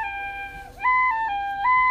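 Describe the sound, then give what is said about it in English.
A penny whistle is played in practice, a few sustained, breathy notes, shifting pitch with a brief dip in the middle before settling into steady higher tones. It plays alone at moderate volume, with no voices. “Looks like I've interrupted your penny whistle practice.”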